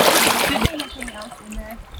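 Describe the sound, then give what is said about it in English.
River water with a strong current splashes and rushes loudly for a moment, then the churning settles under a low murmuring voice as the flow continues in the background. “It's strong. I didn't expect it to be that strong. Right. It's strong. I love this river.”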